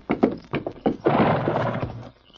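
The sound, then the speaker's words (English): A horse, Silver, gives a long, loud whinny, preceded by a quick run of hollow hoof clops in an uneven rhythm as it is led from a room. No one speaks. “He took the gun belt that had been thrown over a chair in the corner, buckled it about his hips, wait a minute, then led Silver from the room.”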